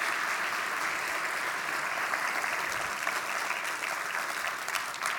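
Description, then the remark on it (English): A church audience applauds steadily for missionaries who came back to Aguascalientes, a dense, even wash of many hands clapping at a constant loudness throughout, with no voices rising above it. “First of all, let's give a big round of applause to God for all those missionaries that came back to Aguascalientes.”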